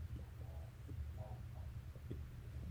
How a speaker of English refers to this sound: I was burping. I'm sorry. I was like, are you okay? My acid reflux is coming in.